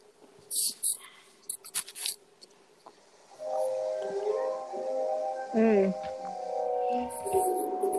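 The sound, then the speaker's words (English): A cat growls in a film clip: a long, wavering, throaty drone that swells and dips in pitch, following a few short, sharp hissing bursts at the start. “That cat is like Shere Khan.”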